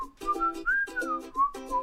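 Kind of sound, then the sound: human body sound, human whistling a tune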